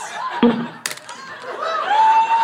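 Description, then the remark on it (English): A live audience cheers and shouts at a steady, moderate level, with a couple of sharp whoops and a rising whistle-like cry standing out over the continuous roar. “Well, hold on, before you cheer.”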